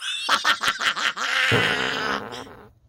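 A man at a gym lets out a loud fart: a quick run of sputtering, bubbly pops followed by one long, raspy, buzzing blast that trails off at the end.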